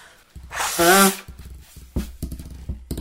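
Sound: nose blowing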